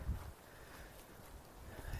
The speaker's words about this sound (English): Ooh, wind.